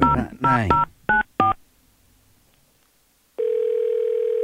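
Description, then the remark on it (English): Touch-tone keypad dialing to call QVC customer service: a quick series of crisp, clear electronic beeps, then a short silence before a steady, continuous phone tone starts and holds to the end. “She's going to call them and look like she does.”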